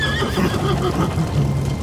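A horse lets out a loud, drawn-out whinny lasting about two seconds, its pitch wavering and trembling throughout, with no voices over it.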